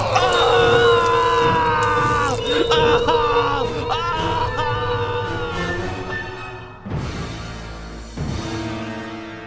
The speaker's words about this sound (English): And he's not screaming for help, is he? The corruptors have found him and they're gutting him alive.